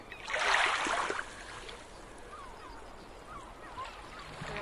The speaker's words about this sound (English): So you're recording right now and the first boat's coming in.